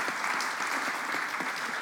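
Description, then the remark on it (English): An audience applauds the architect of the project, a steady, dense patter of many hands clapping at an even, fairly loud level throughout, with no voices rising above it. “So let's give Brett a little round of applause as well.”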